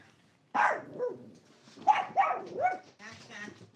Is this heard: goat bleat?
no